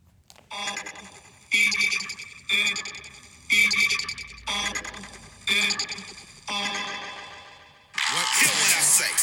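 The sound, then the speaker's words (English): A song opens with six loud, evenly spaced sustained notes, each cut off abruptly, then a harsh, raspy scream bursts in near the end and holds to the close. “So I'm just going to play the start of the song, and like 7 seconds in, you're going to hear a scream.”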